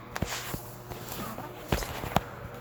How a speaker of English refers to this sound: In a little while, however, she began to hear a little pattering of footsteps in the distance, and she looked up eagerly.